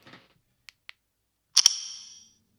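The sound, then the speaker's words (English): The new default lock sound of an iPhone: two faint ticks, then a sharp double click that blooms into a bright, high metallic ring with an echoing tail fading out over about a second, with no voices. “Should I try and do like at least the lock noise now, so people can hear it if they want to?”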